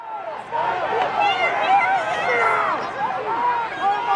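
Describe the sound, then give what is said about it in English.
A dense wash of overlapping voices from a crowd of thousands at a rally on the Ellipse, a grassy area where President Trump is speaking, at noon on Wednesday, January 6th; steady and fairly loud throughout, with no single speaker standing out, just continuous chatter and murmuring from many people outdoors. “Media will not show the magnitude of this crowd.”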